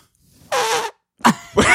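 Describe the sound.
A voice mimics the doorbell of the Belching Beaver Brewery with a crude, raspy belching noise: one sustained burst, a pause, then two shorter blurts, fairly loud, with no talking.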